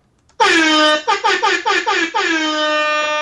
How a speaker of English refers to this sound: Whoa, thank you for the air horn introduction.